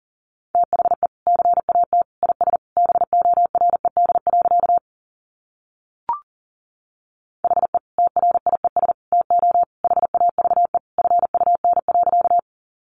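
Fast Morse code at around 40 words per minute: a single steady mid-pitched beep keyed in rapid dots and dashes, two long runs separated by a pause broken by one brief click.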